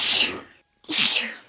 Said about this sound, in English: Always sneeze twice. That's my life motto.